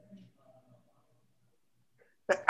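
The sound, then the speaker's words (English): After a long stretch of near silence, a single sudden sneeze bursts out at the very end, loud, with a short sharp explosive burst of breath. “Bless you.”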